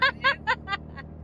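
A steady, low road rumble from inside a moving car runs throughout, with five short bursts of someone's snickering laughter riding over it.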